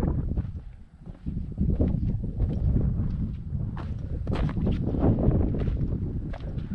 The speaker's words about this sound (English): Boy, it's very quiet here when I shut my mouth for a few moments. Just a little bit of wind, but we can probably take care of that.